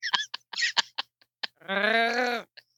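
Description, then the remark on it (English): A person imitates a drowning cat: a burst of sputtering, gurgling splutters followed by a strained, wavering wail that holds for under a second, then a brief squeak at the end. “Now I'm a drowning cat.”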